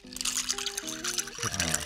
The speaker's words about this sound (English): All right. Stirred it up. Nicely stirred. Now you're going to try to pour